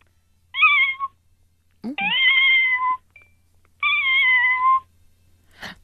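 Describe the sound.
A human voice imitates a cat meowing, giving three loud, drawn-out meows with short pauses between, the second and third longer than the first.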